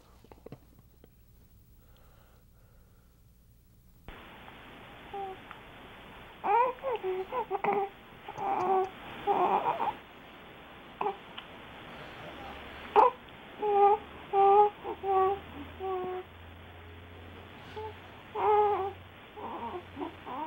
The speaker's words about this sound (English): Now, we received a video from overseas, a different country, and in it, an infant is just delighted by something. Take a look.